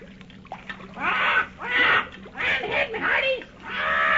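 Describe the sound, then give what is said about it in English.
Paul Parrot, a ship's mascot parrot, squawks excitedly as the boat nears Galto Island, a rapid run of about five harsh, raspy calls, loud, each burst rising and falling with barely a pause between them. “Paul Parrot himself, the ship's mascot, seems to be the most excited of all as the boat nears land.”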